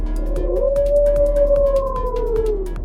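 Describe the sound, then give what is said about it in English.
A voice imitates a wolf howl: one long, sustained tone that rises, holds, then slowly sinks for nearly three seconds over a low background hum with faint clicks. “Wolf lets out a howl”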